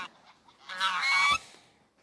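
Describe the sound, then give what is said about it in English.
Geese honk in a loud, raucous burst lasting under a second, harsh nasal calls overlapping closely, with faint background noise before and after. “They're geese.”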